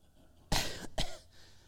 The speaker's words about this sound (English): Let's all cough and clear our throats two or three times.